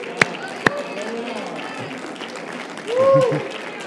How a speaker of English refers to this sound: And if you can get your mind wrapped around that, I can go ahead and rejoice, because that's a day that he's made. Somebody clap your hands and shout now.